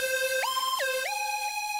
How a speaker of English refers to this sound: Sleepy-headed and bleary-eyed, I squint at my phone as it blares a so-called twinkle alarm call.